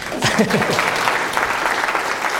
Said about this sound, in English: That's it. That's my talk. This is where you clap for me.